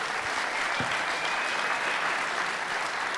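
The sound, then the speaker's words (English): An audience gives a round of applause for Fletch and Gemma as the show breaks for the interval, a dense, even wash of many hands clapping that stays at a constant loudness throughout, with no voices rising above it. “Just give Fletch and Gemma a big round of applause if you're so kind.”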